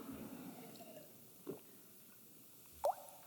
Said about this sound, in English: Think about that for a second while I drink this water.